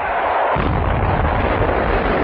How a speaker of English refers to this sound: Two more shells finish off the submarine.